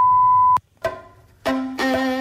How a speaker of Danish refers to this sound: Hello, please leave a message after the tone.